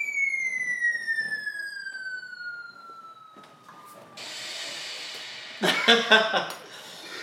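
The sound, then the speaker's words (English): A DJ's bomb-drop effect: a loud whistling tone slides steadily downward for about four seconds, then gives way to a harsh, crackling explosion burst with sharper hits near the end. “Drop the … Bomb one time.”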